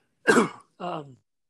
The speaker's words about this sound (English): one second, I got a cough.